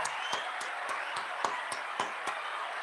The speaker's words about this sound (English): Applause. Where's the applause button now? We got to send me some applause news.